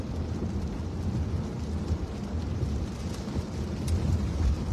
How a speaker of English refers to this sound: And it's amazing how, first of all, it's dark out, plus now the rain.